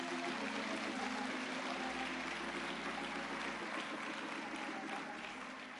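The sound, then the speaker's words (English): An audience applauds the choir, dense steady clapping that stays loud throughout with a faint murmur of voices underneath, easing slightly near the end. “Let's get the Lord a hand clap for our choir.”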